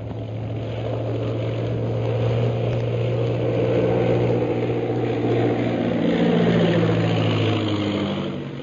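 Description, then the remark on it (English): Several propeller airplanes of an air squadron drone steadily overhead as they turn back from a flight and come in to land at a camp, a loud, continuous engine roar with deep humming tones that tapers slightly at the end. No one speaks. “Following the example set by the leaders, the rest of the 15 planes of the Purple Triangle Air Squadron turn back from the ordered flight and land at the camp.”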